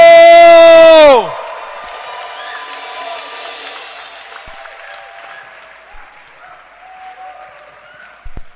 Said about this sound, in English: And if you are excited, as I am excited, give a loud shout and let us welcome our pastor,